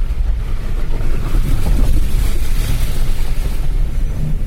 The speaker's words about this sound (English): Okay, it's getting steeper now and deeper water. I think maybe I came in there a bit fast. The big brown muddy splashes all around me. I think I'm probably going to have to close the windows, otherwise I'm going to get absolutely slithergulated.